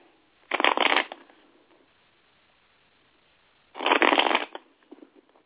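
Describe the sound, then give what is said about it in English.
A deck of tarot cards is shuffled twice in quick riffling bursts, each lasting about half a second, with a quiet pause between them and a few soft taps at the end. Fairly loud. “All right, Spirit said I got to shuffle it three more times, so bear with me.”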